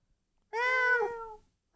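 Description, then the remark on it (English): A single drawn-out, high-pitched meow lasting about a second, fairly loud against a quiet background, most likely a person's voice imitating a cat, aimed at a sleeping pet cat. “Yeah, she's over here. Meow.”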